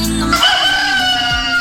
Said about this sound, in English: Cock-a-doodle-doo. That's right. That's right,